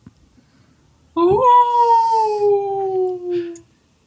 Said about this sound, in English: That's a Tiberian wolf that we hear in the background.